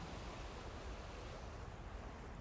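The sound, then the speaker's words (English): A steady, low wash of ocean water, small waves lapping against a dock on Ruston Way just before 7 in the morning, with a soft rumble and faint wind noise. No one is talking. “You might be hearing some of the waves.”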